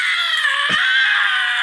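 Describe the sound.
A voice imitates a harsh, raspy black metal scream, a sustained shrill, strained shriek lasting under two seconds at a steady loud level with no other talking.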